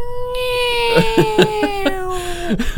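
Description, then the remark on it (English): A voice imitates a woman's laugh that sounded like a dolphin: a loud, shrill, sustained squeal that slowly drops in pitch, broken mid-way by about five quick chattering pulses, with no other talk. “And so she came into that night, and when she laughed, it sounded like a dolphin.”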